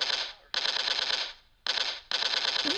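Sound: gunshots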